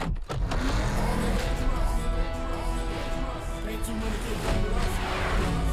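A car in a movie trailer roars loudly and steadily, its engine noise dense and continuous with brief sharp impacts, layered under a dramatic cinematic mix.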